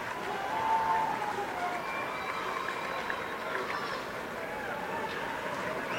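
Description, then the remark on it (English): A large arena crowd roars steadily at a holiday tournament trophy presentation in Florida, with fans in the back stands chanting a USF chant rising out of the dense, sustained noise for the whole stretch. “And you can hear the crowd in the back stand round with the USF chant.”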